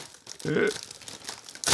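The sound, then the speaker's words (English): Crinkling and rustling of stiff, very strong wrapping paper as a gift is unwrapped, with a brief louder crunch midway and another burst of crackling at the end, over faint background voices. “What kind of wrapping paper is this? Very strong.”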